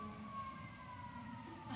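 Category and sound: vehicle, ambulance siren passing outside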